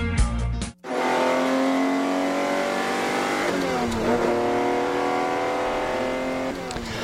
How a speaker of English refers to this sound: Now, that sound effect right there was a Ferrari.